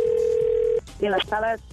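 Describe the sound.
A steady electronic telephone tone hums for under a second, like a line ringing through the earpiece before a prank call, then stops as a voice briefly speaks over the phone line.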